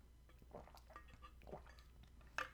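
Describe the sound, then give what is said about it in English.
Quiet slurping of water drawn through a straw, with a few soft wet sucks and gulps and a brief louder slurp near the end. “But on this podcast, we have drinks with straws because the loudness of my hydro flask and just it's quiet. Anyway, just take a sip of water for a second.”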